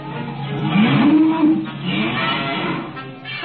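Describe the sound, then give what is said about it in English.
Uncle Henry's heifer, Bossy, lets out a long, rising moo that rings over a steady background of rushing cyclone wind, then fades into continued blowing noise. “And Uncle Henry's heifer. Bossy! Bossy!”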